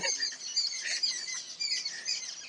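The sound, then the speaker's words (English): A flock of birds calling excitedly around a mongoose, overlapping chirps and sharp scolding notes in a continuous busy chorus, no voices. “And there are a bunch of birds who've surrounded it and are trying to sort of pick a fight with it, but are, of course, maintaining a distance.”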